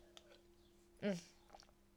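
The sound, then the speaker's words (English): A single short sip of water, a brief wet slurp lasting about a quarter second, with a faint swallow after it over a steady low hum. No one speaks. “but the first thing, I'm going to have to take a sip of water.”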